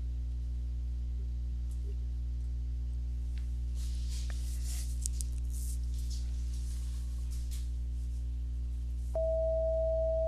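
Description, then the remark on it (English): A steady pure 648 hertz tone, one of a set of eight tones, switches on near the end and holds evenly for about a second, sitting over a constant low electrical hum with scattered hiss and crackle earlier. “So that's one of the 8 tones. 648.”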